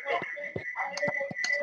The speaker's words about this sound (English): Ooh, feedback. I'm gonna turn that down.